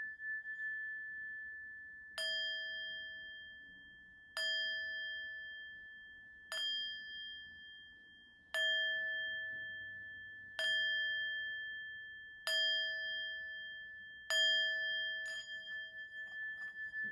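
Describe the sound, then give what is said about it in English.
A light, clear bell used for sound therapy is struck about seven times at a slow, steady pace, each ring shimmering and fading into the next. It is heard alone, fairly quiet, with no talking. “You should hear that light ringing in your ear, releasing all not serving your highest good.”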